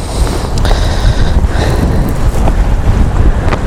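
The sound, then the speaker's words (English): Heavy wind batters the microphone on an exposed hillside above a river in wet weather, in constant low rumbling gusts, loud, with a faint hiss of water in the background and no voices. “Yeah, it's too windy. I'm too exposed here.”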